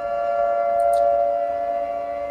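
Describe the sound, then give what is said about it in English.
A loud air raid siren holds a steady, droning wail throughout, its harmonic tone sustained without rising or falling, with no voices present. “So, you all are attempting to, like, make your way out of the forest now, and as you get out of line of sight of this thing, and please tell me if I need to turn the volume down on this, the sound of an air raid siren fills the forest.”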